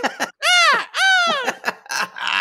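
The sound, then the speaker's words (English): A human voice imitates a cuckoo clock call, two drawn-out, arching cries of "cuckoo" in a row, loud, followed by brief scattered vocal sounds. “There's a little cuckoo clock that's going to go, cuckoo, cuckoo, stick it in.”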